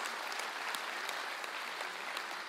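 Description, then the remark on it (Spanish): A church audience in El Paso claps for the Lord steadily and continuously, a dense wash of many hands with scattered sharper claps standing out, holding an even, fairly loud level throughout with no voices rising above it. “Hey, denle un aplauso al Señor, un aplauso a Él.”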